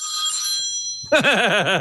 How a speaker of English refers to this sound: You're in a hotel room and your phone just rang.